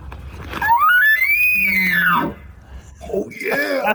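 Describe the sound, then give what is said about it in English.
An elk bull bugles once in response to calls, a loud, high whistling note that climbs, holds, and slides back down over about a second and a half, followed by softer, lower warbling tones. “I'm here trying Millsap to get these bulls called up.”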